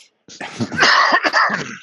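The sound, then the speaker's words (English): A loud burst of harsh coughing from a speaker, several rough hacks running together over under two seconds with a raspy, throat-clearing quality, no talking alongside. “Sorry about this coughing, folks.”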